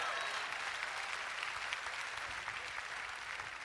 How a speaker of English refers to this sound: Somebody ought to clap their hands and praise him.